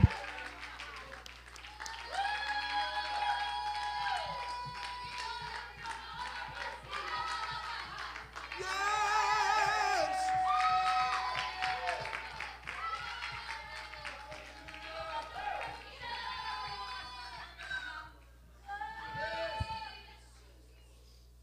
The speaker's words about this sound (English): Oh, somebody give the Lord a grand hand clap of praise right now. The King of Glory is in this place.